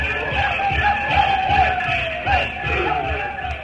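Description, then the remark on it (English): A frenzied crowd of tribesmen shouts and yells while dancing, a loud, continuous din of overlapping shrill cries, with faint rhythmic tom-tom beats underneath, in the hills. “The shrill yells of savages shouting and dancing themselves into a frenzy.”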